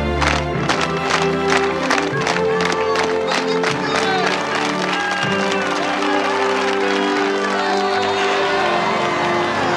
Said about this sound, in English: And you know, of course, we have the obligatory slow clap.